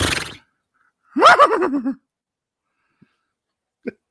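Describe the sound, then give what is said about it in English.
A person imitates a horse whinny with one loud, quavering vocal call lasting about a second, pitch trembling and sliding downward, followed by quiet with a couple of faint clicks. “I have a horse impression.”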